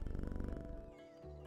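A video game cat purrs as it is petted, a steady, rapid low rumble for most of a second, then fades into a soft electronic chime with sustained tones.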